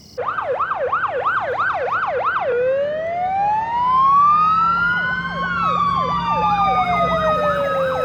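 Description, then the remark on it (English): Loud fire truck sirens wail in the street, a rapid yelping pattern giving way to long rising and falling tones that overlap one another, over a low rumble of traffic. “The next night, high drama. Fire trucks in the street,”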